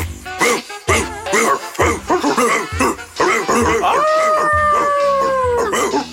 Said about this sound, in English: This ad was aimed at dogs and not understood by humans. Woof! It's for dogs. It's a dog thing. You won't understand.